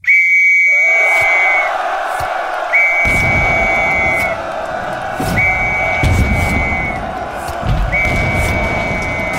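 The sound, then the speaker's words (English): A shrill whistle signalling men to attack sounds in four long, steady blasts, repeated at regular intervals over a loud, rumbling roar of many men shouting and charging. “Then the whistle blew.”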